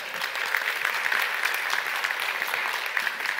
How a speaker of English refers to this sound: If you did join us for workday, raise your hand. We just love to know that you're a part of it. We clap for those folks.